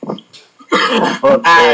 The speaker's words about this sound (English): Just start coughing. Get your ass back.